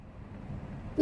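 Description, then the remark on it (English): A low, steady traffic rumble runs for about a second, then a loud, brassy car horn blast cuts in right at the end, abrupt. “Hey, look out! Sorry about that, kid. Traffic gets worse every day.”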